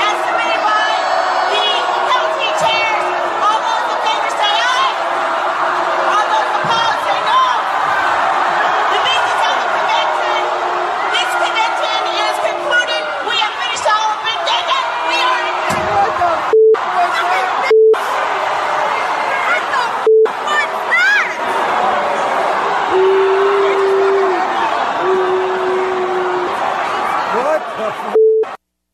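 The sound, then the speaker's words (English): A large crowd at a Nevada State Democratic Party convention shouts, yells and curses at once after the chairwoman called a voice vote, adjourned and left; a dense, continuous roar of many voices that stays loud throughout, with a few short electronic beeps cutting in toward the end. “Anyway, she called for the voice vote, and the crowd curses after she adjourned and left.”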